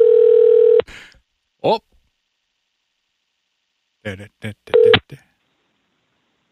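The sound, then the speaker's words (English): A steady phone dial tone hums for under a second before cutting off, followed by a brief spoken exclamation and then a short cluster of clicks and tone beeps as a number is dialed to call a man back. “Give this man a phone call real quick.”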